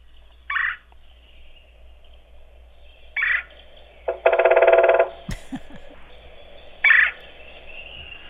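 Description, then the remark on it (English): A woodpecker's harsh, raspy "queer" call repeats three times at spaced intervals, with a louder rapid rattling burst in the middle. It sounds like a fairly loud playback recording, with no talking. “So that's called a queer call, queer, Q-U-E-double-R.”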